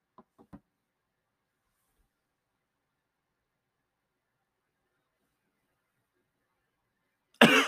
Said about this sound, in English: Sorry, guys. I'm coughing way too much. There's like an itch in the back of my throat.